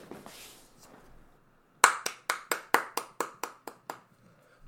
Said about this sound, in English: One clap. Thanks. I can't clap more than one clap.